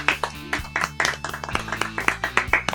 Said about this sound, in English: Clap it out.